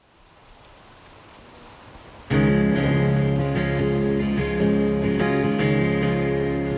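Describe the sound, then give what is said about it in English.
Heavy rain falls in a dense, steady hiss on a morning; a couple of seconds in, a loud, sustained droning hum joins and continues over the downpour. No one speaks. “On the last morning, it rains as hard as I've ever seen.”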